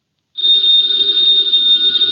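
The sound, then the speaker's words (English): A telephone bell rings loudly and steadily in Nero Wolfe's office, a sustained bright metallic trill that starts abruptly after a brief silence and continues without pause to the end. “Ladies and gentlemen, the ringing of that phone bell means adventure.”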